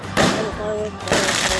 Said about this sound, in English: Another firework. Oh God. Another tear gas grenade.